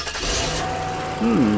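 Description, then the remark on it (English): A car with a suspected broken fuel pump is started while its fuel pressure is checked with a gauge: the engine cranks with a short burst of noise, then settles into a steady, low idling hum. A person speaks briefly over the running engine near the end. “Can you turn the car on for a second”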